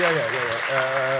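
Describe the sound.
Steady applause from an audience for a young man who asked the best question, a dense wash of clapping heard together with a raised voice speaking over it.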